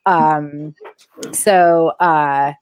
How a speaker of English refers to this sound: My dogs are whining in the background.